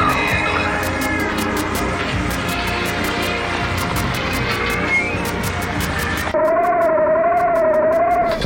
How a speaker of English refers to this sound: The ring modulator.